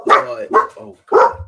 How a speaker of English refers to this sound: Oh god. Dogs.